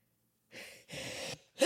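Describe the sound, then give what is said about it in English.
A sneeze: two breathy, gasping inhales build up before a sudden sharp burst cuts in at the very end, with no talking around it. “You can't stop a sneeze.”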